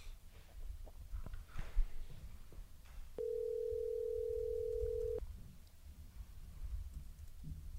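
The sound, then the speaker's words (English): A phone call to a fighter ringing out: one steady, mid-pitched ringback tone lasting about two seconds, sounding over a low background rumble with a few faint clicks before and after. “So we'll give him a ring and see what he's got to say for a few minutes here.”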